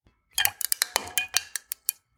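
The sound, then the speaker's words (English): Crystal cracking as a hairline fracture spreads into a spiderweb: about ten sharp, brittle snaps and ticks in an uneven series, each bright with a faint glassy ring, fairly quiet and with no voices. “The crystal's crack begins to spiderweb.”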